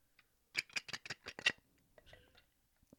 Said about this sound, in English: shuffling through the cards, looking at the questions, but not picking them.